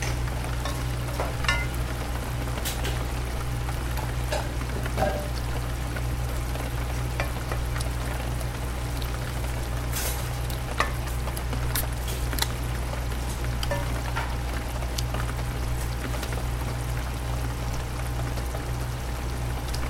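Food sizzles and crackles steadily in a hot pan on a rainy evening, a dense continuous frying hiss with scattered sharp pops, fairly loud, with a low steady hum underneath and no voices.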